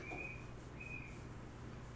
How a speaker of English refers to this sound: What is the freaking whistle? I have no idea. Is it a bird? Or is it like the neighbor's kid with a whistle? I don't know, but I think it's the neighbor's kid with a whistle.